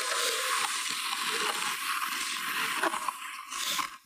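A shovel scrapes and crunches continuously for about four seconds, a harsh, hissy grating with brief louder strokes, then trails off. No one speaks.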